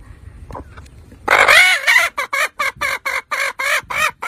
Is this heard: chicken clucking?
yes